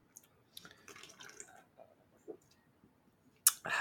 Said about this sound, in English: It's delicious. that was a nice solid gulp and sigh and... Thank you.